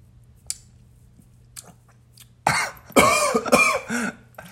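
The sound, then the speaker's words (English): A few faint clicks and slurps, then a burst of three or four harsh, loud coughs, like someone choking a little on a sip of gas station Celsius that went down wrong. “Well, went down the wrong.”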